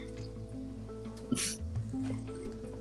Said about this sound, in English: I'm just drinking some water.